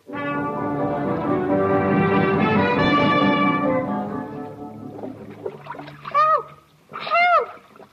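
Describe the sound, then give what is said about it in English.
After a ship hits a rock, heavy splashing and churning sea water fills the first few seconds, then gives way to frantic, rising and falling cries from the Robinson family thrashing about in the water. “The following day, the ship hits a rock and we find the Robinson family struggling in the water.”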